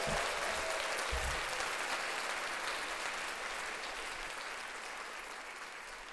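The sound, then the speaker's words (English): Sustained audience applause, a dense wash of many hands clapping that stays loud throughout and only slightly thins toward the end, with no voices standing out. “Let's take an audience clap break.”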